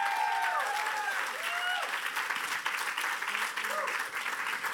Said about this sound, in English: Can we give these students a big round of applause? Thank you, guys. Thank you.